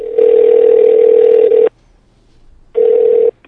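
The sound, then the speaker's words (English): A telephone ringback tone hums steadily through the line as a call is placed to a tour company: one long ring of about a second and a half, a short silence, then the start of a second ring. No one speaks. “Let's get them on the phone.”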